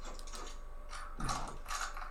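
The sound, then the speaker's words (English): A video game door lock unlocks with a short run of mechanical clicks and ratcheting clunks, two or three louder bursts near the end, with no one speaking. “Alright, I'm gonna unlock this door.”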